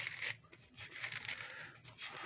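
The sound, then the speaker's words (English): Soft, papery rustling of book pages being turned as people look up Acts 20:24 in the scriptures, several overlapping flutters and crinkles in quick succession, fairly quiet and continuous with no voices. “I like to hear those pages turning.”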